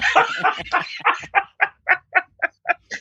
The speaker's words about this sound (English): I hear a howl in the background somewhere.